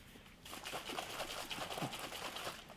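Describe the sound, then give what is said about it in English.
About 4 ounces of water pour steadily out of a 16.9-ounce bottle into a container, a soft continuous trickle with bubbly, gurgling splashes at low volume, with no talking. “I'm going to pour out 4 ounces.”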